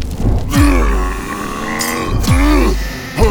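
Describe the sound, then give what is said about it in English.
A voice lets out two long, loud straining grunts while trying to push over a heavy cannon, each swelling with effort before a short third grunt begins at the end. “do you think you're strong enough to push over the quantum cannon?”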